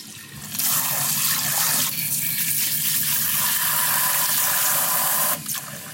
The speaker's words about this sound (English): We're gonna fill that up with water so it doesn't stick. It's kind of too late.